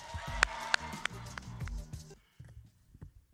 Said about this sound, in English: And keep that applause going.